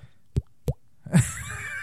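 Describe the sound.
Someone imitates dripping water with their mouth: two quick, hollow plops with a rising pitch, followed by a louder, breathier, messier attempt that trails off.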